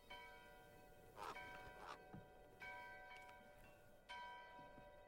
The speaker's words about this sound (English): The bells. So far, the music and, like, ambience in this one has been good.